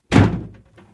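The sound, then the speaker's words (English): A door slams shut with one heavy thud that booms and fades over half a second, followed by a faint rattle as it settles. No voices are heard. “Please don't slam the door.”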